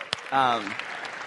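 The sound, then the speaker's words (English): A brief burst of crowd applause welcoming people back for the second week of a three-week challenge opens with a sharp clap, then a single cheering voice rises over a steady wash of clapping that carries on for about a second. “In fact, I just want to clap and just welcome you that you're back second week.”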